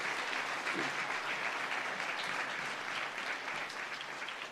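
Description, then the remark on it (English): A church audience applauds newly installed deacons in a steady, dense round of clapping that holds at an even level for several seconds, with no voices breaking through. “Okay, let's give them a round of applause and comments here.”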